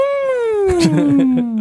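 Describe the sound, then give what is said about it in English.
A voice imitates a car trying to start: a sustained whining tone slowly sliding downward in pitch, with a run of rough, sputtering pulses through the middle, lasting under two seconds. “That's a car trying to start.”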